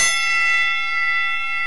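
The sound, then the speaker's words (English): A boxing ring bell clangs once, loud, its bright metallic ring sustaining and shimmering steadily with no voices over it. “It's going to talk heavyweight. Ring the bell.”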